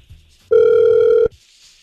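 A single loud ringback tone from an outgoing phone call placed by the radio station Hot 96.9, a steady electronic buzz lasting under a second, with faint low background noise before and after.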